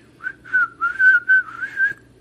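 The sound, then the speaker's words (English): A played recording of the Andy Griffith theme tune being whistled, a bright, jaunty quick run of connected notes rising and falling over about two seconds, with no talking. “I can't whistle, so I can't really whistle the theme song”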